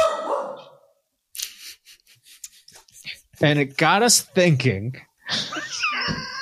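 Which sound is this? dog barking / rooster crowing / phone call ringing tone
dog barking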